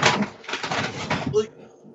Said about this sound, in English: Are you building a boat? No, I was grabbing shit out of the bag. Is your bag made of hard plastic? No, it's made of fucking paper,